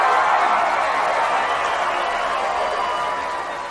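An audience applauds steadily, a dense, even wash of many hands clapping that holds at a fairly loud level for several seconds before easing slightly at the end.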